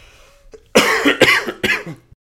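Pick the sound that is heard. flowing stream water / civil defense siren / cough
cough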